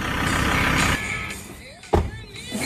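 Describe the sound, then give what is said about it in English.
A lifted ute rumbles as it drives and slows down, the engine noise fading as it drives up a curb and pulls in to park, followed by a single sharp thump. “You didn't have to randomly drive up that curb like that.”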